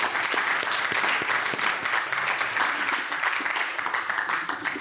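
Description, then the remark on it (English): An audience applauds steadily for several seconds, a dense wash of many hands clapping at once, fairly loud, with no break or voice over it. “I'd like you to give him a round of applause.”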